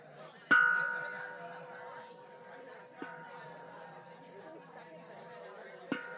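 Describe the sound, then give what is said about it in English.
A bell is struck once sharply to get people's attention, and its bright tone rings on for several seconds over a room full of murmuring chatter, with a couple of softer taps following later. “I can't use the bell.”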